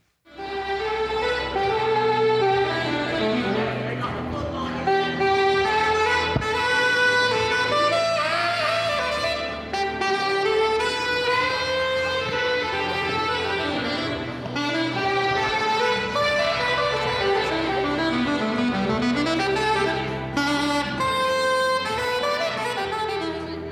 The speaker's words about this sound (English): That is nasty. The man playing the saxophone is my next guest